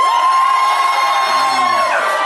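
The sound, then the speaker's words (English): A crowd cheers loudly and steadily to vote for the option "genius", with high whoops and shouts layered over a dense roar of voices that holds for a couple of seconds. “Can I get a cheer for genius?”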